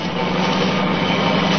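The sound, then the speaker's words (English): A car engine roars steadily at night as the car travels fast, a continuous low droning hum with a rough, noisy texture and no pause or voices over it. “Seems to be traveling at quite a rate. Too fast, even this time of night.”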